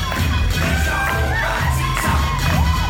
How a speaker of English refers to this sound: The crowd goes wild